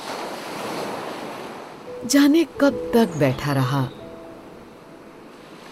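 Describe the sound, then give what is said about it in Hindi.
Steady wash of high ocean waves rolling onto the seashore, a continuous mid-loud roar with gentle swells, while a man speaks briefly over it in the middle. “फिर भी जल्दी ही संपर्क करने की बात कहकर वहां से उठकर वह समुद्र किनारे आ बैठा।”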